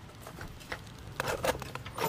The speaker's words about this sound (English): But let's get inside. Let's get out of the rain. Hopefully I can open the door and still talk into the microphone at the same time.